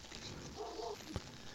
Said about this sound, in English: Can you hear that? Mm. Is that your dog? Yes. Fuck. Hold on.